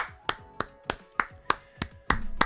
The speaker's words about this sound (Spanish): Primero de todo, aplauso grande para vosotros. Aplauso.